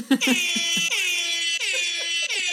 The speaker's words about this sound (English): Should I find the air horn? I'm sure I still have it somewhere. Oh wait, I got you, bruh. All right, hit us with the air horn.